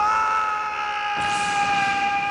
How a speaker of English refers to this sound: You put it in, load it up, and you're immediately greeted by a man screaming.